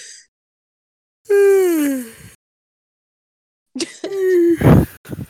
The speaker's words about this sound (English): Literally, you even saying the word yawning just made me yawn. Oh god, I said it, so now I'm gonna yawn.